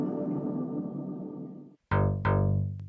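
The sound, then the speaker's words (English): A harsh FM synth tone run through a distortion effect drones, cuts out briefly, then strikes twice in quick succession with gritty, buzzing harmonics, loud with no voices. “There's also a distortion. That's cool.”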